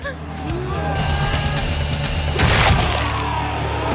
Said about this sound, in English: That's one of those sound effects that's like sounded like Gallagher smashing a watermelon.